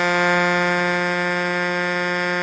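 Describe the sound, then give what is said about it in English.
A car horn blares loudly and steadily for the whole stretch, a deep, brassy, buzzing blast like an 18-wheeler truck horn, rich in harmonics and with no talking over it. “Let's hear your horn.”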